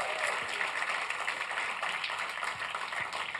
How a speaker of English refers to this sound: And if you believe that, I give a clap offering to Jesus.